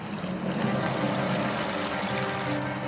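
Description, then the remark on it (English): A small stream flows steadily through a canyon with steep walls, its continuous gurgling and trickling water filling the whole stretch at an even, moderate level with no voices. “You've got this little stream, you've got these steep canyon walls.”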